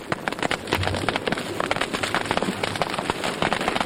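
A recording of crackling fire, played by scientists to reed frogs in the West African savanna: a dense stream of sharp pops and snaps of varying loudness over a steady hiss, with a faint low rumble underneath and no voices.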